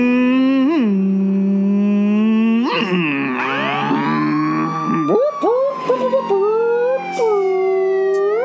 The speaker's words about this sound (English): Oh, that's my police siren sound. I knew what that was.